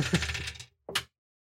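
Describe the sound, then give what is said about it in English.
Dice rolled off a dice table clatter across a hard surface in a short rattling tumble, then, after a brief pause, a second quick sharper clack as they settle. Fairly loud, with no voices. “Right now, the GM is creating a space adventure by rolling dice off of a dice table.”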